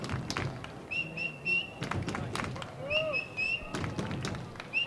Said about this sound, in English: Boy, that's annoying, isn't it? That bird? Yeah. Pitches high. I could give him a number of a good exterminator.